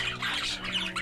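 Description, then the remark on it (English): A dense, chaotic burst of bird calls and screeches in a laboratory, overlapping squawks and chittering whistles filling the space loudly and continuously for about a second, with no speech. “The laboratory is filled with a cacophony of bird calls, chitterings, whistles, and screeches.”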